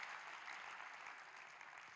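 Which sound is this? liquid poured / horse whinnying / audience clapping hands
audience clapping hands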